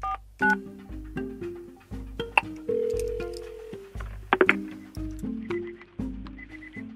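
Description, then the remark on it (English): A series of short electronic telephone keypad tones, beeping in quick steps of different pitches over a steady low hum, with no voices, as someone dials a phone call from an office. “So one day, during a down period at work, I picked up the phone and called him from the office and asked if I could record.”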